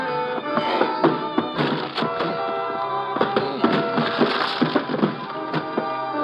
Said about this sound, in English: I start throwing my shoulder against the door.